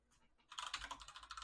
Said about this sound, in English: I get the typing.